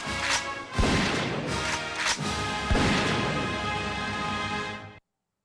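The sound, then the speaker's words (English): Three sharp, loud gunshots crack out at uneven intervals over a continuous harsh, noisy rumble, and the sound cuts off abruptly after about five seconds. “Next thing you motherfuckers would hear, you'd think fucking Kurt Cobain is somewhere around because you'd hear...”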